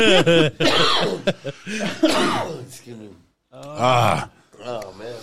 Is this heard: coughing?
yes